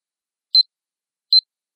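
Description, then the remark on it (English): Two short, high electronic beeps, evenly spaced less than a second apart, crisp with silence around them and no voices, from a red umbrella used like a metal detector and pointed straight at the ground in a sandbox. “His red umbrella pointed straight at the ground and was beeping like crazy.”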